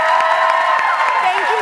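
Loud, steady studio audience applause fills the whole moment, a dense wash of clapping topped by cheering and a few rising whoops from the crowd.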